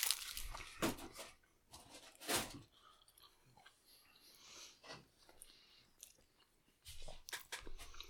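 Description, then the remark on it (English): Loud, crackling crunches from biting into a crisp bacon Crunchwrap from Taco Bell, three sharp bursts early on, then softer, steady chewing with occasional louder crunches and breathing. No one speaks. “Friends, for $2.99, you can get a bacon Crunchwrap from Taco Bell.”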